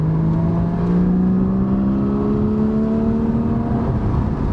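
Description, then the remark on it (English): A car with a bike on a rear rack hums steadily and loudly from inside the vehicle, its engine pitch climbing gradually as it revs up while driving, with rumbling road noise underneath and no voices. “It's a fun car to drive. Can be a handful at times, but super predictable.”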